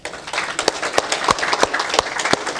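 An audience at a morning gathering breaks into applause for the Business Power Plant, a dense, steady wash of many hands clapping with a few sharper individual claps popping out, sustained and fairly loud throughout without any voices.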